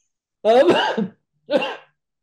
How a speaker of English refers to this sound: My cough has mostly gone away, so you won't have to cut too many coughs out this time.